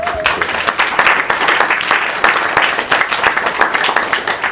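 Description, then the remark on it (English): An audience breaks into steady, dense applause to honour those with a child or relative with special educational needs, many hands clapping at once in a continuous, even roar of claps that holds loud for several seconds without any talking. “I just want to, can we just give them a clap?”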